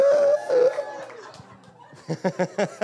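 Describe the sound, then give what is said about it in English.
A high, drawn-out excited scream from someone in a crowd rings out and wavers, then fades into a run of short, rhythmic bursts of laughter. “There was a lot of hormones in that scream.”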